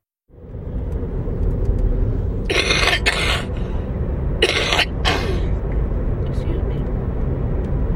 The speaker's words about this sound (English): Excuse me. You got grandma's cough. Bad.